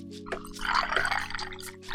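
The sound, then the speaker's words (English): Liquid pouring steadily into a glass for about two seconds, a bubbling gurgle with a faint low hum underneath and no talking. “We ain't even pour it, cuz. You gotta pour it.”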